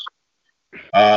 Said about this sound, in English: And of course, what a belch